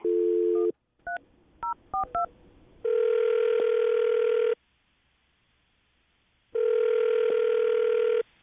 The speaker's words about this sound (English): All right, man, I'm going to dial the phone number. See if we can get her on the phone and get your second date update, okay?